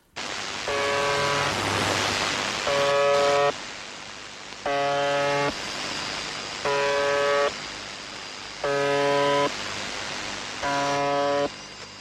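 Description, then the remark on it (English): A radio station's harsh, harmonically rich buzzer tone sounds in six evenly spaced bursts, each about a second long, over a constant bed of loud static hiss. “The buzzer's activity has increased since the 1990s, while this might also be linked to the increase of listeners to the station.”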